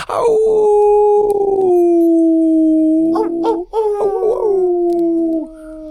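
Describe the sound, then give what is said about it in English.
Human voices mimic dog howls, sustained wavering tones sliding slowly downward, with a second voice joining in partway through, loud with no other talking. “You might be asking yourself, why are we howling?”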